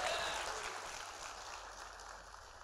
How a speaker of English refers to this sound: Somebody clap your hands like that's a good possibility.